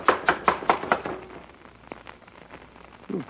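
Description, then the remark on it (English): A quick series of about five sharp, hollow knocks on the wooden door of a rundown house, reached by a porch, in an even rhythm, followed by quieter scattered thumps and shuffling. “Don't rap too hard. It'll knock the door off its hinges.”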